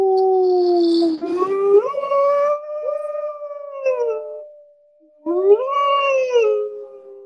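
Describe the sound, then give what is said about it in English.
People imitate wolves, letting out long, loud howls that rise and waver in pitch, with a brief pause before a second rising howl. “And let's howl at the moon. Ow, ow, ow.”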